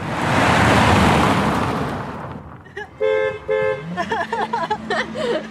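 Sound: car horn beeping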